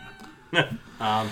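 A cat meows twice in quick succession, a short rising cry followed by a longer, steadier one, clear against a quiet background.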